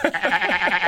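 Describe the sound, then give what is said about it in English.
A person imitates a sheep's bleat, like the sheep they woke to at a recording studio in Wales: one drawn-out, quavering "baa" with a rapid tremble, fairly loud, lasting about a second. “Yeah, there was lots of sheep noises influencing this record.”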